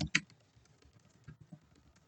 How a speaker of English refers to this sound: Sorry, I was just typing on my computer there.